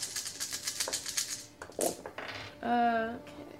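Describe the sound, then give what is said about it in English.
Dice clatter across a hard tabletop in a quick burst of rattling clicks, then a few sharper knocks as they settle, rolling a 6, followed by a short tonal sound. “Hey, my dice roll 6.”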